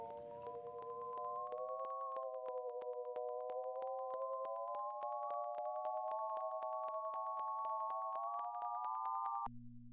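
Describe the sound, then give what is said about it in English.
A data sonification of silver and gold coin data over time: a steady, bell-like layered tone that drifts slightly higher, punctuated by a fast, even stream of clinking coin-drop ticks, ending abruptly just before the close when the data set stops. “For this sonification, I really had two ideas for sounds in mind, the sound of coins dropping on the floor, and the other one was banging or like a bell-like sound.”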